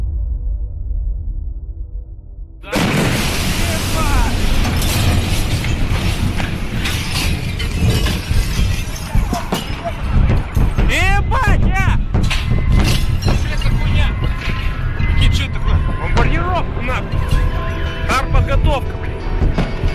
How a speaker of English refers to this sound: Powerful explosion and shattering of hundreds of panes of glass are not sound effects, but actual recorded footage of an atmospheric detonation of a 13,000-ton meteor over Chelyabinsk, Russia, on February of 2013.